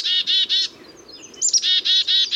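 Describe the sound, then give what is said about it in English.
Black-capped chickadees, birds that visit backyard feeders, call with quick runs of buzzy, harmonic "dee-dee-dee" notes. A brief thin high note falls between the two bursts, and nobody speaks. “Even birds who visit backyard feeders, like these black-capped chickadees, need a healthy mix of seeds, berries, and insects, often found on the native plants that we villainize as weeds when they grow on our lawns,”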